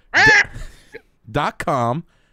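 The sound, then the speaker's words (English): A person does a loud imitation of a chicken clucking: one sharp squawk, a brief pause, then a two-part "ba-gawk" call with a rising, nasal finish. “Like a loud egg, yeah, like a beck. Bagok!”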